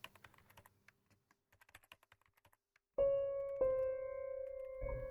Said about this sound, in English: I just listened to the clicking sound of her laptop. Her fingers always moved so fast over the keys.